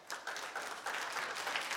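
A crowd applauds steadily for veterans coming up to receive certificates of appreciation, many hands clapping together in a dense, continuous patter that holds at a moderate level throughout, with no voices standing out.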